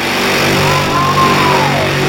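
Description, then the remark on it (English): A funny car's drag-racing burnout, the car of the 2017 funny car champion with the ET record: a loud, harsh engine roar that holds steady and unbroken for about two seconds, with a faint whining tone rising and falling inside it. No voices. “Robert Height, funny car burnout.”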